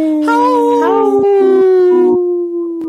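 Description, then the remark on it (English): Several people howl together in imitation of wolves, their long wavering voices overlapping loudly before most drop out and a single howl trails on. “There's a couple times where … and I had to be the only howlers.”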